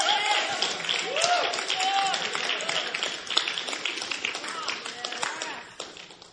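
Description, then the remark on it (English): A crowd applauds steadily for several seconds, a dense wash of overlapping claps, with voices calling and cheering over it before the clapping starts to thin out at the end. “Yeah, let's clap. That's a good clap point”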